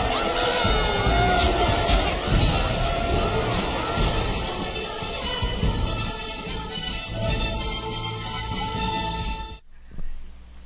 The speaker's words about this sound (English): Big turnout here from all corners of the Outer Rim Territories. Order! We shall have order! The crowds are going nuts!